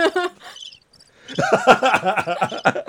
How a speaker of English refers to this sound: Where's the chirping? Chirp.